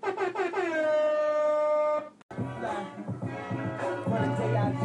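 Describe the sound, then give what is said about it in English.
A loud, brassy air horn sound effect on Relate Radio blares in one sustained blast for about two seconds, wavering at the start, then cuts off abruptly as busy music kicks in. “Relate Radio, Relate Radio, Relate Radio, air horn.”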